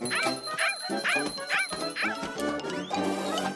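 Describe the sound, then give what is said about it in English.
Madam Mimi's cheese-seeking poodles bark and yip in a rapid, overlapping burst, about half a dozen high-pitched yaps in quick rhythm, followed by a jumble of excited barking, all fairly loud. “Let's hear it for Madam Mimi and her cheese-seeking poodles!”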